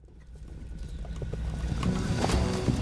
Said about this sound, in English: Listen to that sound, and what do you hear? The pummeling vibrations of charging horse hooves on the ground, of course.